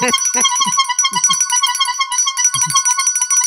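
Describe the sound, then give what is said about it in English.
A loud, busy burst of a horn and bell sound effect: bright ringing tones and a steady buzzing note, punctuated by short low honks, continuing for several seconds with no talking. “And I would, in honor of that, I would like to give it the horn and the bell.”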